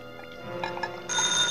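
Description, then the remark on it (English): A telephone rings at night in an empty office building, eight stories up, its bell tone buzzing steadily and growing brighter and louder partway through, with no voices. “But at night, eight stories up in an empty office building, that ringing sounded urgent.”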